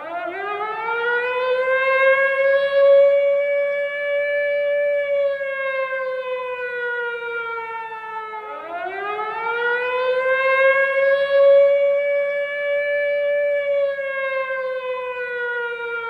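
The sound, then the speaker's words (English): A loud, wailing alarm siren rises sharply, holds a long steady tone, then slowly falls before climbing again in a second cycle, its harmonics sustained throughout with no voices. “You know, the funny thing is, when we used to hear the word lockdown, we always thought of a prison going into it, after an inmate, or even several, escaped and an alarm sounded, as all the guards frantically searched everywhere for them.”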